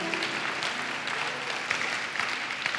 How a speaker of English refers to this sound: Wow. What words of loyalty. Clap for Ruth for the words of loyalty.